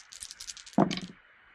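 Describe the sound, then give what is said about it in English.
Dice with plus and minus faces clatter and rattle in a quick series of sharp clicks, then land with a louder thud and a brief tumbling skitter before settling into quiet, showing two pluses and two minuses. “The dice, I've got 2 pluses and 2 minuses, so they are neutral.”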